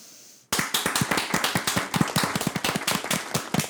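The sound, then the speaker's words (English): Several hosts clap their hands in a rapid, uneven patter of sharp bright claps after a brief quiet moment, the clapping loud and continuous for a few seconds with no talking. “Real quick, we had another guest, and when we started clapping early in the episode, he's like, is it over?”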